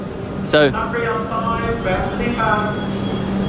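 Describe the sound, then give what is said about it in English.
Busy railway station ambience: a steady low rumble of trains with indistinct voices chattering in the background, and a brief sharp high-pitched squeal near the start. “But sorry, I'm on a train station.”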